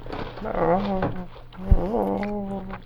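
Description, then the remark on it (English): A cat gives two drawn-out, wavering, mournful growls, each rising and falling in pitch, with a short sharp knock between them over a low steady hum. “Oh, plaintive growl.”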